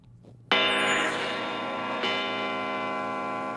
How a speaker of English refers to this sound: It's like I know that bell.